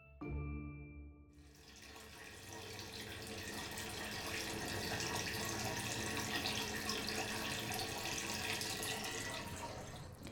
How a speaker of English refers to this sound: Water. Water from my neighbour's tap, which is a 1 minute hop and jump, hop, skip and jump over their wooden fence, through their garden, to their garden tap.